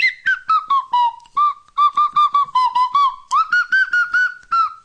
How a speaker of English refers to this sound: Just standing in front of the microphone with my fucking whistle, man.